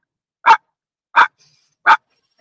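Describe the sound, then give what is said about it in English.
A person imitates a chihuahua's yapping with three short, sharp yips evenly spaced about two-thirds of a second apart, loud, with silence between them. “And then there's little chihuahuas.”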